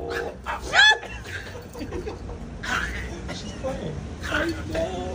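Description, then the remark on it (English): A dog, Snow White, yips and whimpers in a playful scuffling chase after a cat named Catastrophe, with a sharp, high rising yowl near the start and restless animal cries continuing through, while voices murmur in the background. “She's chasing catastrophe. Snow White is chasing catastrophe.”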